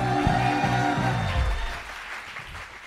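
A comedy show audience applauds steadily as a comedian comes up for an uninterrupted 60-second set while a bright musical sting plays over it; the music cuts out midway and the clapping continues, gradually thinning and growing softer.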